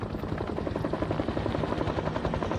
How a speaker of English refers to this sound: An all-expenses-paid visit to Galway Races, on board a helicopter which would pick him up at his home in Marlfield.